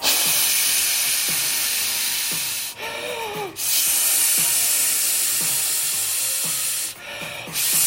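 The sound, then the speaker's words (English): A person imitates blowing into a breathalyzer ignition interlock device fitted to a car's steering wheel, with a long, steady, breathy hiss, broken by a short pause with a brief voiced hum, then resuming before another brief gap near the end. “And you have to blow in the machine. So you have to get, okay, pretend I'm blowing in it.”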